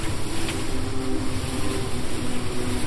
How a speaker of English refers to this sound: I call above the rush and roar of an ocean climbing into the sky.